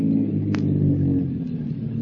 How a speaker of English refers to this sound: A car comes around a curve. Slows up.